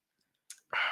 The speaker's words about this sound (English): Slurping into the mic a little bit more next time.